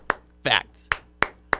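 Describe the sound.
Four sharp hand claps in a rhythmic pattern, with a brief vocal syllable after the first, like a chant-along wrestling clap, done in a pre-match wrestling promo as a parody of The New Day clap, with a fact at the end. The last three claps come in a quicker, evenly spaced run.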